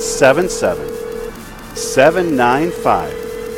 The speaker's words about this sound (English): So if you all called in, if I had 7 people who would call in right now and give at any level, we would get all phone lines going. You hear that noise? That's the sound. That's the sound.